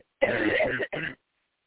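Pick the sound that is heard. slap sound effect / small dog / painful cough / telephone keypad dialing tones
painful cough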